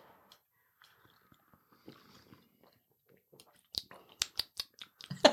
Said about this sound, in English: Yeah, so here we go. Should we slurp? Yeah, let's have a good old slurp. Let's go. It might be too hot to slurp.